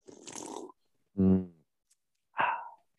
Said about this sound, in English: Tonight, I am drinking Industrial Arts Brewery. Oh, far out. The beer named Metric. It's a very nice beer. I'm going to sip on it right now for audio viewers, listeners.